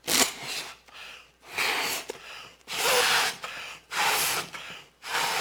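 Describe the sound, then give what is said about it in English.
Someone blows up a balloon with about five strong, breathy puffs in a steady rhythm, each a loud hiss of air separated by short pauses for breath. No one speaks. “Now is this balloon doing what it was designed to do? It's received its purpose.”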